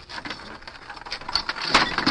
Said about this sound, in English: Then they were lifted into the big freight wagon. Close the tailgate.